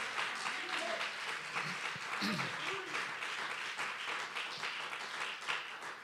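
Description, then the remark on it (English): An audience worshiping God claps their hands in a steady, dense wash of applause that holds for the full stretch, with a few voices calling out briefly underneath. “If you do, you ought to clap your hands and let the Lord know you believe it.”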